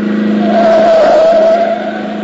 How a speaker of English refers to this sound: whoever was driving that car deliberately tried to run us down. That's obvious.